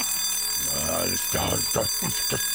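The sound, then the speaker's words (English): A voice imitates a blaring security alarm, with a long wailing sweep followed by several quick repeated rising and falling whoops, loud. “Father says, all right, just stop that alarm.”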